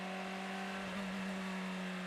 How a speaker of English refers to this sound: But that car is moving perhaps on limp horn mode and not much else. Well, he's got engine power. We can hear the V8